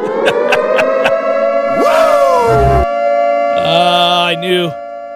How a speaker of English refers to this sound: I knew it was coming. Anytime, if you just hear me mention …, you got to know then, oh, here comes the siren.